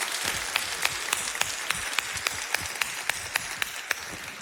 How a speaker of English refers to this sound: Oh, can we give a hand clap to our worship team at all of our locations? Come on.